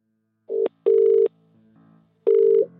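A telephone rings on the line with steady electronic tone bursts, a short one then a longer one, a pause, then another, loud and clear with no one talking.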